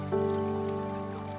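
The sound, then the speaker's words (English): Soft water lapping makes a steady, rain-like patter beneath a sustained, humming musical drone. It stays even and gentle throughout, and no one speaks. “As you focus on the water moving back and forth and the tranquility of the water moving around you, you can almost feel your body swaying along with the water's pulse.”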